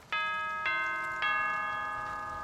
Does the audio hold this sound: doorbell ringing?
yes